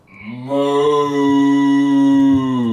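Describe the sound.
A person down on all fours imitates a cow, producing one long, steady, low moo that swells in quickly and holds for about two seconds before trailing off, with no other sounds around it.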